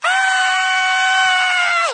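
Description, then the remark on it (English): A single voice lets out a loud, sustained scream for about two seconds, imitating a crowd of some 500 children all shrieking at once as loud as they can, steady and strained before cutting off. “They just started screaming as loud as they could, right? They were just like, ah!”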